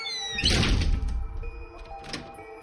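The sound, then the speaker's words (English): A heavy door swings shut with a solid, low thud, followed by a brief rattle and a fainter second knock as it settles, with a thin ringing tone lingering underneath. “We stepped inside and he shut the door, entombing us in darkness.”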